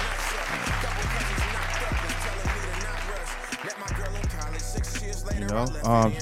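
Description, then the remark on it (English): A round of applause for passing a certification exam rises over a steady thumping beat, the crowd clapping dense and continuous throughout, with music carrying underneath and a brief dip near the end. “Well, you need that round of applause because them shits you got to study for.”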